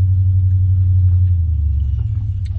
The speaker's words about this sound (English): This guy's starting his truck next to me, so you get a little sound of that.